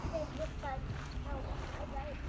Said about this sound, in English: As the Thames Link goes over the railway bridge behind me, I can hear that now.